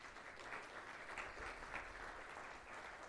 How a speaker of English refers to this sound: So I want to not only take a minute to recognize the men and women that have served, but also their spouses. So if we can get a round of applause for them too.